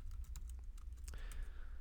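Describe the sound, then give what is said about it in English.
Rapid, feverish typing on a computer keyboard with quick, irregular clicks and taps over a low steady background hum; no voices. “He's typing feverishly over there something.”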